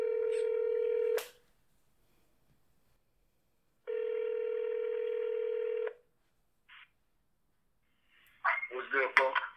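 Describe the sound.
A phone line rings twice with a steady electronic ringback tone, each ring long and separated by a pause, then a short click and a voice comes on at the end.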